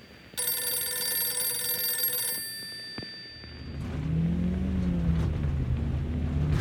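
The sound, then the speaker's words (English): A telephone rings with a bright, buzzing, steady tone for about two seconds as the call goes unanswered, then trails off and gives way to a low rumbling noise like a passing vehicle. No one speaks. “Contessa called Penny, but no one answered, not even the answering service company.”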